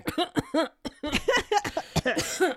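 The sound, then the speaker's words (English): A voice breaks into a few quick bursts of laughter that slide into rough, forced coughing, all within a couple of seconds: Ron from Harry Potter turning his laugh into a cough after Harry tells Professor Trelawney he was born in July. “Harry tells her he was born in July, and Ron has to turn his laugh into a cough.”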